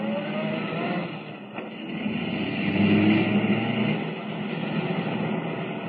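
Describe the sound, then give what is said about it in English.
A car engine roars steadily at speed as the car chases a blue roadster, a continuous rumbling drone that swells louder around the middle before settling back, with no voices. “Can the car Kent is driving keep up with the blue roadster?”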